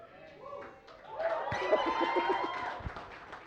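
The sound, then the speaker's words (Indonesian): A church audience breaks into applause during a pastor's sermon about a second in, a dense, steady patter of many hands clapping that continues to the end, mixed with voices and brief laughter. “Alah, kalian ini seriusnya tepuk tangannya.”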